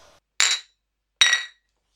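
Two bright glass clinks of pint glasses knocked together in a toast over a first pint, about a second apart, each ringing briefly before fading. Fairly loud, with no talking.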